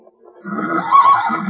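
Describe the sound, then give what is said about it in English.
A pony gives a single loud neigh, a quavering whinny that swells and holds for about a second with no talking around it. “We have a pony.”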